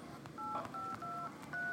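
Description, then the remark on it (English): A teacher in a classroom dials a phone call to the office: four telephone keypad tones one after another at a steady pace, each a clear two-pitch beep, over faint background noise. “I have to make a phone call to the office, please.”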